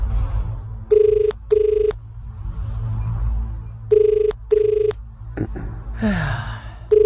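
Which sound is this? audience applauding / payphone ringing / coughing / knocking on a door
payphone ringing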